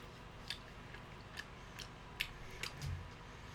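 Quiet chewing of a dense, crunchy food like a power bar: a handful of sharp crunches spaced irregularly over a few seconds, with no one talking.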